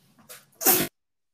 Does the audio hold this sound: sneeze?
yes